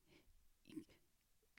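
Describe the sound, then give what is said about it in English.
A few quick, ragged breaths in short bursts, fairly quiet, like someone gasping in a panic; a person seems to be acting out the heavy breathing with their own voice. “Listen, a little panic breathing.”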